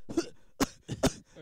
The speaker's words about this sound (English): What are you doing? I'm coughing on you. Why are you coughing on me?